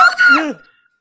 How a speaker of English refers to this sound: That scream.